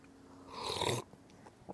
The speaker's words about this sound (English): I'm gonna take another sip.